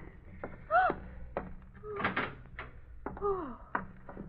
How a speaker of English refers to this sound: Open the room door